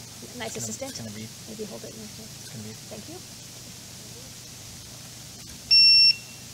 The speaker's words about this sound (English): It's going to beep. Maybe hold it. It's going to beep. Thank you. Yeah. So when you plug it in, it just does that alert beep. That's how you know it works. So that's how you know how loud it is. Yeah. All right. Really annoying.